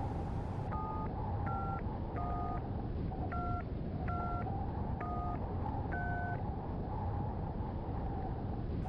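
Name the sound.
telephone number being dialed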